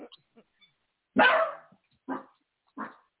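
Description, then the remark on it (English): A dog barks three times, a loud first bark followed by two shorter ones spaced about a second apart, with faint murmuring voices before the barking starts. “That's, you know, he's the alarm dog.”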